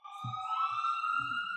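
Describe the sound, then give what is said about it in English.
A siren wails steadily for a moment, its tone gliding slowly upward, with a low rumble of traffic underneath, and no one speaks. “Oh, sorry, I got another. It's okay. Siren, go ahead.”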